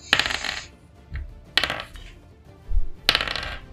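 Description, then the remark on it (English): Three separate bursts of dice clattering and skittering across a table, evenly spaced about a second and a half apart, with soft low thumps between them and no talking. “I need a dice tray.”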